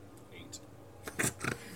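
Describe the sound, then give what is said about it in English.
New dice clatter across a tabletop in a quick burst of several sharp, bright clicks, moderately loud, over a faint murmur of background voices. “Rolling too hard. No, you're not, but... They're new dice, I'm warming them up.”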